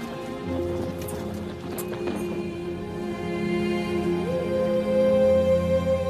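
Horse hooves clip-clop in a loose, uneven rhythm, most distinct early on, over a steady droning musical bed that swells slightly toward the end.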